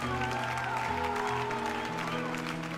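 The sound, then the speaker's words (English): An audience gives a clap of praise to God, clapping steadily and continuously for about three seconds, the dense patter of many hands blending with sustained keyboard chords playing underneath. “Come on, let's give God a clap of praise.”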